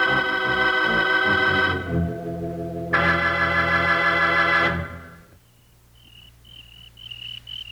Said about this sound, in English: Oh, crickets. Golly, Charlie. Sounds like that really make me homesick for the range.